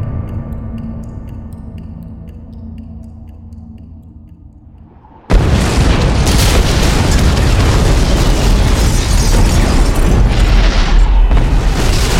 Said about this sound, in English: An ear-splitting explosion greeted Mary Marvel's return to the mortal plane.